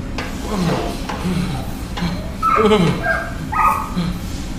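dog barking and whimpering

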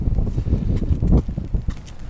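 wind blowing

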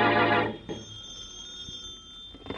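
telephone ringing

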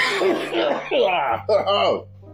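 throat clearing and coughing

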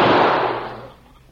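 gunshot

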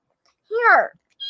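kitten meowing

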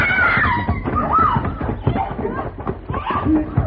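woman screaming

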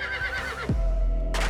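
horses whinnying

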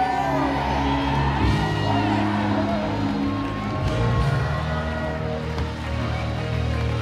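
audience screaming and shouting

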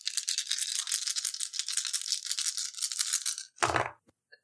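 dice rattling

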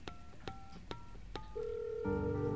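dialing a landline telephone

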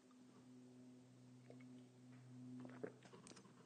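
sipping coffee

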